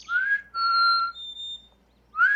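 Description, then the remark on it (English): A person whistles an imitation of a black-capped chickadee's song: pure, clear notes, an upward slide, a held tone, a brief higher note, then another rising whistle. “But it's like a whistle. Here, I'm going to try whistling it.”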